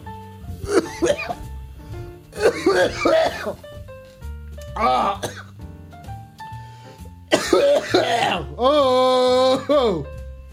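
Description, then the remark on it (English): Several loud coughs and throat-clearing bursts come in uneven clusters, separated by short pauses, ending with a strained, voiced rasp over a faint steady background hum. “Gotta cough to get hot.”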